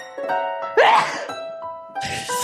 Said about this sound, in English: Sometimes you gotta sneeze, my friend.